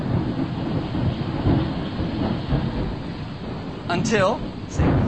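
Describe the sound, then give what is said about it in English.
A loud, steady downpour hisses throughout while deep thunder rumbles and rolls. Near the end, a brief wavering, voice-like tone rises over the storm. “It's a really loud storm.”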